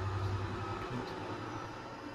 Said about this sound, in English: Another train. Good timing.